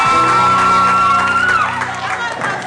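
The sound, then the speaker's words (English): A large audience screams and shouts loudly and continuously, a dense roar of many voices with a high whistle-like cry and steady low tones underneath, fading slightly toward the end. “I've never heard this many screams in a while.”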